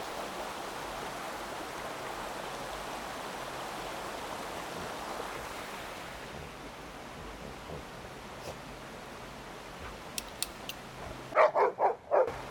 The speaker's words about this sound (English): Here's the rest of this river.